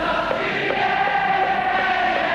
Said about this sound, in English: And the extraordinary crowd culture of the Kop was born, fusing city, pop culture and football club. I've never seen anything like this Liverpool crowd.